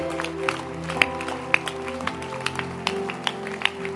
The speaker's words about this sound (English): Keep clapping.